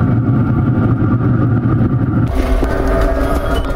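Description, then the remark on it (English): A grill runs with a loud, steady low roar while chicken and pork chops cook, the rumbling noise shifting partway through to a thinner, hissier texture. No one speaks. “And we may or may not because of the noise of the grill.”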